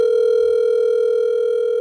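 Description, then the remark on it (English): A steady, unbroken telephone dialing tone hums at a mid pitch for nearly two seconds, loud and even, with no voices, as a phone call is placed. “Okay, now let's go ahead and give John Shull a call.”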